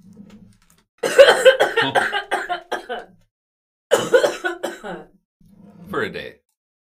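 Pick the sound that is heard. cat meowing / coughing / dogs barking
coughing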